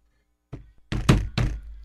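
A drum is banged: one lighter hit, then three loud, heavy, booming thumps in quick succession, with no talking.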